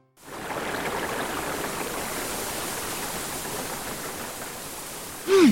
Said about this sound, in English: The sun is shining, it's beautiful in the mystic forest, and the roaring river is calmer than usual.